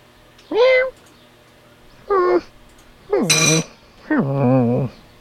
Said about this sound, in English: Welcome to Simon's Cat, where you will be able to adopt your very own baby cat. Did you hear that? There's a baby cat waiting to be adopted.